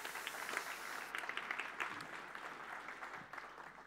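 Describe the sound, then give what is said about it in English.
On Palm Sunday, a room full of people applauds steadily to thank those who will lead groups this term, a dense wash of many hands clapping at once, fairly loud and sustained for a few seconds with no talking over it. “Can we just give a round of applause to all those people who are going to be leading the group?”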